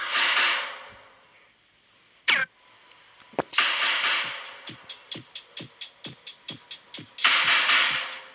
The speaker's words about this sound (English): Don't really ever listen to this song. But here it is.